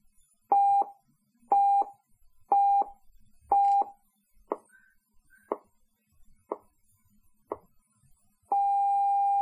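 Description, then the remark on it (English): A radio time signal: several short mid-pitched beeps and sharp ticks spaced about a second apart, then a long steady dash tone marking exactly 10 o'clock Pacific Daylight Saving Time that holds to the end, with no talking. “The beginning of the long dash indicates exactly 10 o'clock Pacific Daylight Saving Time.”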